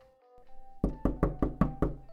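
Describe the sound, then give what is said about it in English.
A rapid series of about six loud, solid knocks on a door in a steady, evenly spaced rhythm, preceded by a faint low hum, with no voices. “Who is it? It's me, AJ, man. Open up.”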